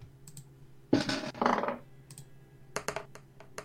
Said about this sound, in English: That was a good die sound. Metal dice. Heck, it was very satisfying.